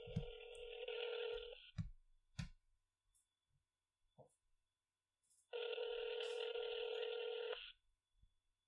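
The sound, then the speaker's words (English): A phone line rings out: two long, steady electronic rings a few seconds apart, heard clearly over the line, with a few soft clicks and thumps in the quiet gap between them. “let's see if we can get him on the phone.”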